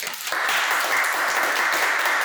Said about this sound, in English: Please give me a round of applause for Paul.